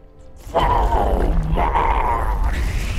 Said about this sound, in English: He roared with a fury that shook the ground around them and really freaked out several local dogs.